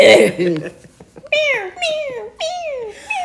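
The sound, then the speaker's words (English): A person imitates a cat, producing several drawn-out, falling meows in a row, fairly loud, with a brief burst of other vocal sound at the start. “Meow, meow, meow, meow.”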